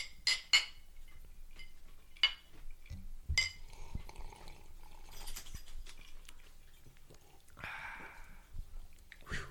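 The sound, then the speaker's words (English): Glasses of Abercrombie & Fitch blended malt scotch whisky clink together a few times in a toast, bright ringing taps, followed by quiet sipping and soft liquid sounds with no talking. “All right, let's take a taste and we'll see how she goes. Cheers.”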